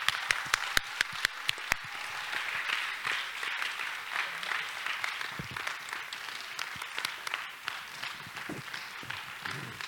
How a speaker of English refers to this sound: I think we should just give them a real round of applause.